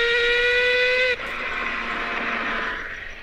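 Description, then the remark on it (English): A four-rotor Mazda rotary race car engine screams at a high, steady pitch, then abruptly drops into a rougher, lower howl that slowly climbs again. Loud, with no talking. “There's Mazda. Really? Is that why it sounds broken? Four rotor.”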